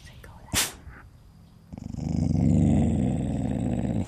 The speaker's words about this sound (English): A couple of hours later, laying in my tent listening to the night sounds, my dog started growling.